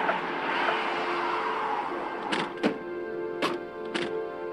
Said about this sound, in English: I turned around and I heard the police cars swinging into my cul-de-sac. The noise of cars pulling into my cul-de-sac.